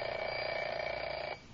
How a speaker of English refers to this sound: All right, sound effects man, ring the alarm clock.